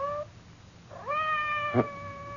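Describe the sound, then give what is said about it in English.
A cat meows twice outside a door, a short call cut off and then a long, rising, drawn-out meow, sounding slightly muffled, with a soft thump partway through. No one speaks. “Did you hear anything? Outside the door. It sounded like Madame's cat, Francois.”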